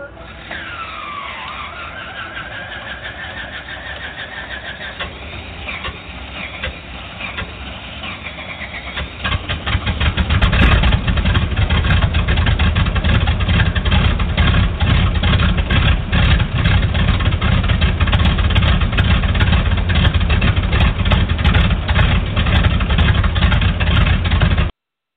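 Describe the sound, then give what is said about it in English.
A propeller aircraft's number one engine starts: a rising starter whine and sputter for several seconds, then the engine catches and settles into a loud, steady idling roar. “REPA 35, you're clear to start engine. Roger, we're starting number one. Clear prop.”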